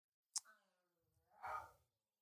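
A female dog gives a big yawn: a sharp opening click, a drawn-out squeaky whine sliding downward, then a breathy, rumbling exhale. No talking over it.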